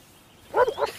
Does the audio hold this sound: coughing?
no